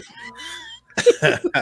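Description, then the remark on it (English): A strained, wheezy vocal sound, then a short pause and three or four harsh, sputtering coughs in quick succession, fairly loud, as someone coughs while drinking beer from a can and it goes up their nose. “The worst part about that was I coughed when I was drinking that, and it kind of went in my nose a little bit.”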